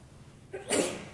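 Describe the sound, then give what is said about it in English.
A single sharp sneeze bursts out after a brief quiet intake, loud, with a bright noisy blast that fades quickly. “Bless you.”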